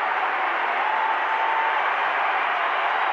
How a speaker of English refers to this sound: Stops for a three-pointer. Kicks the right foot out and tickles the twine. And it's an 8-point game. Jordan Clarkson's got 10. Crowd's into it now.